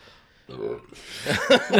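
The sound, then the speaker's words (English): A short, low, guttural burp rumbles out near the start, followed by bursts of lively voices and laughter-like vocal sounds. “I don't know why that burp really reminded me of Garfield.”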